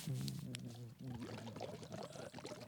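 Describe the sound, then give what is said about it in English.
Continuous bubbling as someone blows and sings through a straw into a bottle of vitamin water, the gurgle mixed with a steady hummed voice tone, fairly loud for a few seconds. “He's like a kid blowing into his chocolate milk here.”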